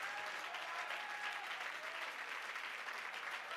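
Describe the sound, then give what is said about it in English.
An audience claps hands in praise of God in the morning, a steady, dense wash of applause, many claps blending together at an even loudness throughout with no voices standing out. “Oh, I wish you'd clap your hands and praise him this morning.”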